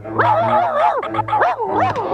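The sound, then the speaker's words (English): A dog barks in drawn-out, wavering, howl-like bursts, about three loud pitched cries running together with no one talking. “Like, that's the only dog bark that's happening.”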